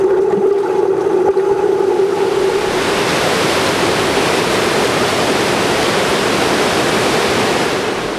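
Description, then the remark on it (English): A loud, steady roar of rushing river water crashing continuously, heard upstream at the loudest point of the roar and filling the whole scene, with a faint low hum fading out in the first few seconds. No voices. “My thoughts were just a mere reflection of the river's continuous crash.”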